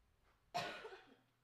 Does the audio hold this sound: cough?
yes